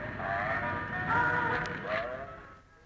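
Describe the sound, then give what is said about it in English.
Tinny, canned fairground music from a travelling carnival with dodgems and roundabouts at Blessington, near the end of May, plays continuously: a bright mechanical melody with wavering tones over a low rumbling background, swelling slightly before fading near the end. No one speaks. “A carnival with dodgems and roundabouts and canned music.”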